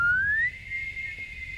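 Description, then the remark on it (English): A professional whistler's single high-pitched whistle slides steadily upward, then holds a bright sustained note, clear with a faint low background rumble and no talking. “How high can you whistle? Pitch wise.”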